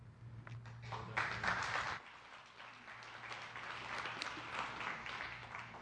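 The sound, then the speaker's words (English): An audience claps steadily for several seconds, a dense crackling burst that peaks early, then settles into a softer, sustained patter under a low background hum. “They never clap for me, bro.”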